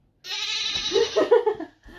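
A goat lets out one long, loud, wavering bleat lasting over a second, rising in pitch and breaking into a shaky quaver near the end, heard on its own.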